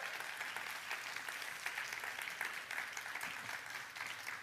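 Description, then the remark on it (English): An audience claps their hands at a preacher's call during a sermon, a steady, dense wash of applause that holds at an even loudness for several seconds, with no voices standing out. “If you want that in your life, I wish you'd clap your hands and say, I want it.”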